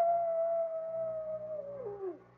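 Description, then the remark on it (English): A single long coyote howl on a cold, moonlit night holds a steady, mournful pitch for about two seconds, then slides downward and fades out, heard alone with no voices. “Hey, you know what that coyote's howling about? He just calling for his lady friend.”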